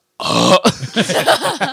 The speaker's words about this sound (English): Dude, every time we go out to eat now, I'm telling you, I'm not the only one that burps out in public anymore. Like, I can't help it.